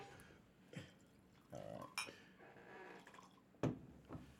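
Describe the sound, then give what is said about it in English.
1792 bourbon pours into glasses in short bursts with glassy clinks, fairly quiet, a few separate pours over a few seconds with no talking. “So we're going to pour up a little bit.”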